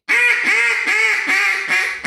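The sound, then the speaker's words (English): A duck call blown in a quick run of about five bright, nasal quacks, loud, with a clean, smooth tone rather than a raspy one. No one talks. “Do the fine again.”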